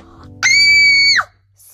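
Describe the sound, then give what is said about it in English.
A mother lets out one loud, shrill scream of alarm as her daughter faints onto the floor, held steady for under a second before breaking off, clear against a quiet background. “Screamed Esme's mother.”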